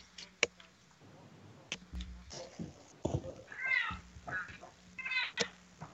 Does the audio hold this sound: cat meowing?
yes